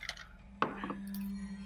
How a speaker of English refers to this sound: Did you roll actual dice? Yeah, I did that time.